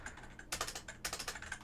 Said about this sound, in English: Yes, I did intentionally buy a keyboard that's this loud.